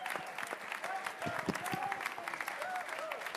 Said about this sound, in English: Let's give a round of applause to all these gentlemen who we look forward to seeing play in the Bronx. And a round of applause for yourselves for making this a wonderful evening.